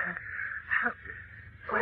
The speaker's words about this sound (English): the Man of Steel kneels over them, working their arms and forcing air into their gasping lungs.